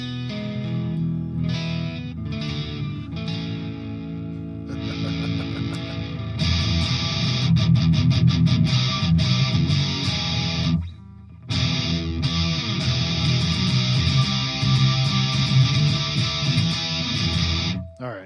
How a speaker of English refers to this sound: See if it cleans up. Yeah, there's like a sizzle to it. But it's more reactive than the Supra distortion was.